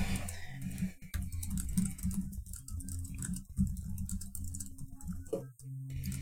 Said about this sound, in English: I appreciate everybody typing things in the doc for me, because I am unfortunately very ill-equipped for typing in Google Docs.